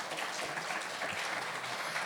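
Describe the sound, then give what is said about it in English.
An audience claps and cheers in a dense, steady wash of hand claps at moderate volume, holding evenly for the whole two seconds with no talking over it. “You would cheer a little louder for, like, doing your job.”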